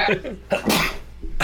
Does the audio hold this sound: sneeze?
yes